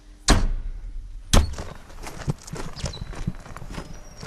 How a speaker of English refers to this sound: I'll just close that door, mate.